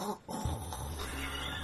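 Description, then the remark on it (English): A voice imitates snoring heard in a chapel with one long, low, rumbling snort-like drone that starts abruptly after a brief pause and holds steady to the end, gravelly and fairly loud. “Snoring. It was like, that.”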